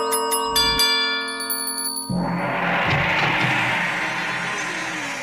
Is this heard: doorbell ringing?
yes